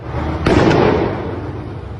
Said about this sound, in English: We are keeping an open mind as to what caused the explosion. But given how it has happened, and out of caution, counter-terrorism police are leading the investigation, supported by Merseyside police. This is what happened in Liverpool.